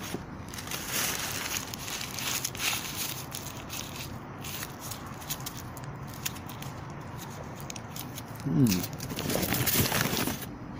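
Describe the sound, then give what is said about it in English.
A mild or hot sauce packet squeezed into a mouth: continuous wet, crackly squelching and smacking sounds, moderately loud, with a brief rising squeak and a louder squishing burst toward the end. “That noise was brought to you by the flavor of the mild or the hot sauce packet as I squeezed it into my mouth.”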